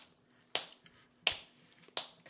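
Three sharp, slapping smacks of a fist striking an open palm, evenly spaced about a beat apart like a slow rhythm, each crisp and quick with nothing but quiet between them.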